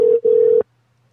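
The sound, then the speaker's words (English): Two loud, steady electronic telephone tones around the same pitch, separated by a brief gap, after a dropped phone call, then the line goes quiet; a flat, buzzy phone-line signal with no voices. “There's a major issue with phones going on.”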